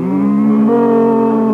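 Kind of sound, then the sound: animal, cow mooing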